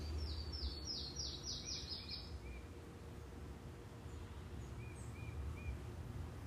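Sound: birds chirping outdoors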